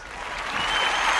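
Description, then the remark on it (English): A brief burst of steady applause, many hands clapping in a dense, even crackle that holds at a constant moderate loudness with no voices over it. “That deserves a dunner clap, man.”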